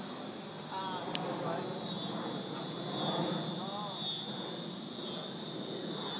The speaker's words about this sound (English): Go those cicadas.